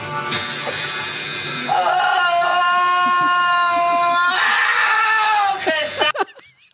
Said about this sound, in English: That's someone's life. That's a person. Jesus Christ. I mean, why it makes me so happy to hear that scream.